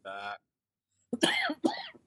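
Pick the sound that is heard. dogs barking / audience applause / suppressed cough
suppressed cough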